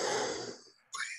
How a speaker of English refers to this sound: You get a little amped up. You got to work on your breathing. Hey, listen. Woosa.